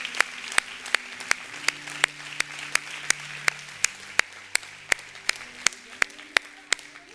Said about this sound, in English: Wow. Come on, can somebody give the Lord a hand clap today?